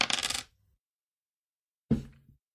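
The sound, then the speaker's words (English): Dice clatter across a table in two separate rolls, the first a quick rattling tumble and the second a sharper hit that settles into a few small bounces, with no talking. “Ooh, who rolled?”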